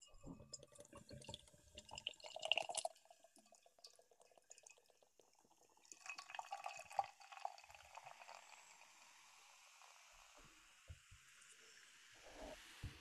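Beer brewed with a New Zealand hop glugs and splashes into a glass, first in a brief burst, then a steadier fizzing pour that tapers off with a few faint clinks and drips near the end.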